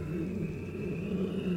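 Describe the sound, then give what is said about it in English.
A low, drawn-out breathing sound, steady and rumbling with a slight growl-like texture, continuing without a break. No one speaks. “As you begin to pass by the hill, you can hear, you especially, a low breathing, a long, drawn out.”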